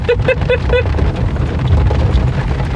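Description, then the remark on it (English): Heavy rain pours down in a dense, steady hiss with a deep rumbling undertone, and four short tonal beeps sound in quick succession at the start. “Oh, and the rain comes back.”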